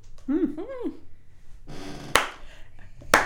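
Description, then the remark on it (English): A slow clap: two sharp, loud hand claps about a second apart, coming after a brief vocal sound and some breathy noise. “I will clarify, that was not an ironic slow clap, but a very genuine slow clap.”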